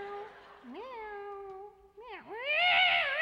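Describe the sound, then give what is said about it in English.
A cat that got too close to a red-hot toaster lets out a long, loud yowl, its wailing pitch dipping and climbing through several drawn-out swells before ending in its loudest, shrillest cry. “Everybody loves to see a kitty cat get too close to a red-hot toaster.”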